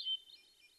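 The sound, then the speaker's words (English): A short, faint hermit thrush song phrase: a quick run of high, flute-like notes that shift in pitch, heard alone with no voices. “Each phrase in a hermit thrush's song lasts less than 2 seconds, but it contains 45 to 100 notes or more and up to 50 changes in pitch.”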